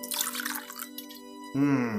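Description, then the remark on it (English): Fine gin poured into a cup: a splashy trickle gives way to a rising, resonant gurgle as the cup fills, with no talking. “I don't have anything to pour it into, so you can just drink it from the bottle.”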